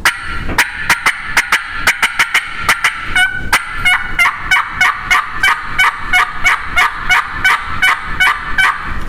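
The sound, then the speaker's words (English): Excited hen turkey cutting and yelping made on a mouth call using the whole top reed: a loud run of sharp, raspy notes, quick and choppy at first, then settling into a steady string of yelps. “What I told that gobbler right then, by doing that, the more excited cutting and the yelping, putting that excited hen yelp to him, that's telling that gobbler that I got excited when I heard him.”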